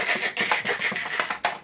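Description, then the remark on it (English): A voice mimics rapid typing on a loud Razer keyboard with a quick series of sharp, clicky mouth noises, irregular, several bursts over a second and a half. “I don't like Razer keyboards, but because they're so loud. Fighting words. You're a Razer advocate. But they're just so loud. Like, you'll type, and you all hear is”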